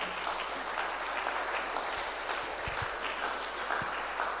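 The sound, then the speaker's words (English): Steady applause from an audience, a dense wash of many hands clapping at once, fairly loud and continuous throughout with no voices rising above it. “You can clap better.”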